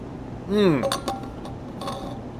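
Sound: drinking water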